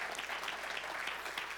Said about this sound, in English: Give yourselves a good hand clap.